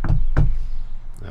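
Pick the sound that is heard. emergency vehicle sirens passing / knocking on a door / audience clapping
knocking on a door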